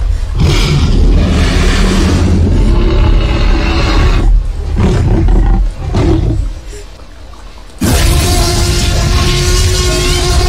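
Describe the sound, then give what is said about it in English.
A booming, gravelly T-Rex roar from the film Jurassic Park bellows, drawn out over several seconds, dips briefly, then erupts again in a second deafening roar. No one speaks. “The only thing I remember from my first viewing of Jurassic Park is, of course, being in the movie hall and the T-Rex roar.”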